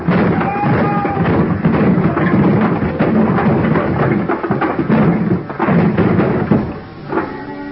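A heavy, empty dolly is sent crashing into the bottom box of a high pile of wooden boxes ready for shipping: a loud, prolonged crash of the boxes tumbling down, a dense run of heavy thuds, bangs and clatters lasting several seconds before tapering off at the end.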